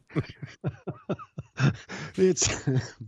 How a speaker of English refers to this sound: That made me cough.